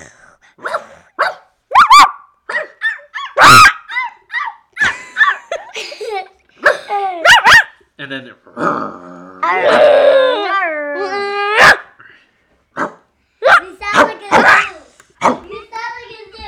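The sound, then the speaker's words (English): A person imitates a barking dog with a string of short, sharp, loud barks and yelps, interrupted by a longer whiny howl and some brief talking. “Gotta do dog and cat.”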